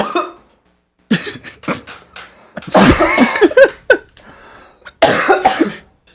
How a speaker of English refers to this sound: just has a cough that doesn't stop since we started the podcast, I think. I think I've been editing out your coughs since the podcast began. I can't stop coughing, and it's just the nastiest.